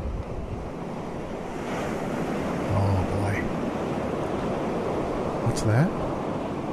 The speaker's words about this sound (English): This is YouTube video titled, "The Most Relaxing Waves Ever, Playa de Piticabo Ocean Sounds to Sleep, Study, and Chill."